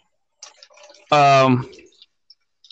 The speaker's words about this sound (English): Are you in the bathtub? No, I'm filling up my fucking water.